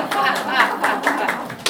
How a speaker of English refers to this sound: If you guys will, a round of applause for our volunteers.